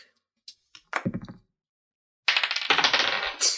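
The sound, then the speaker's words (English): A die with rounded edges, almost a sphere, clatters and rattles across a hard table in two bursts of rapid clicking bounces, fairly loud, with a short quiet gap between the rolls, as players roll for a perception check. “This dice rolls fucking weird. All the edges are rounded.”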